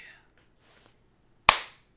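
A single sharp, loud stage slap to a person's face cracks out after a near-silent stretch, a bright smack like a hand clap that rings briefly and fades within a quarter second.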